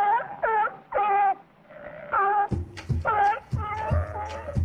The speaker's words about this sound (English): S is for sea lion. Let's listen to its bark.